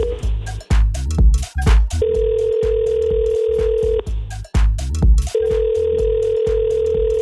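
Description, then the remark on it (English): A phone line ringing back during an outgoing call to a phone number: two long, steady electronic tones of about two seconds each, separated by a pause, heard over the line with busy background sound in between. “Oh, it's ringing.”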